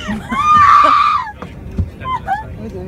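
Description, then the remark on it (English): A woman lets out a loud, shrill, sustained scream over a breakup, lasting about a second, a wild, frenzied yell rather than a cry of fear, followed by fainter vocal sounds and background noise. “Okay, she's in distress. No, that's a psycho yell.”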